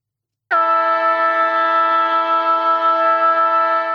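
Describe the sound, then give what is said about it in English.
A loud, steady AFL football game siren blares from a sudden start, holding one unwavering pitch with rich harmonics for several seconds, with no one speaking. “that was the first bit of feedback, wasn't it, last week on the siren?”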